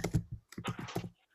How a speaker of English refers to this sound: Yeah, is somebody typing? Would it be possible to turn off mute yourself so that we can't hear the keyboard, please?